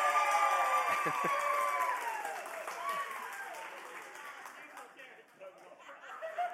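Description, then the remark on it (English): An audience claps steadily to show they think a young contestant won, a dense wash of hand clapping mixed with cheering and crowd voices, loud at first and gradually thinning out over several seconds. “If you think this young man here won, will you give him a hand clap?”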